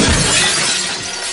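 A loud burst of breaking window glass as someone jumps out through the window: a bright crash followed by a dense shower of tinkling shards that stays intense for over a second, with no voices.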